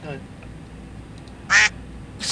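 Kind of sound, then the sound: bird, ducks quacking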